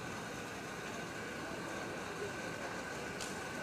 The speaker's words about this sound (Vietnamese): Chứ ồn vậy làm sao mà nghe pháp. Tắt bớt cái quạt đó đi.